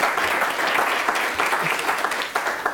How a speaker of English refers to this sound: and by our other brilliant guests, who I think we should give a round of applause just for being with us here in the studio live.